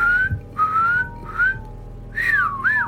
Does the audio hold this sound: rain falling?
no